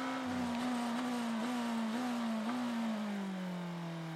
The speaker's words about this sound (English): BMW M Team RLL, the engine note you could hear in the back of the soundstage there, with Conor De Filippi holding on to third position.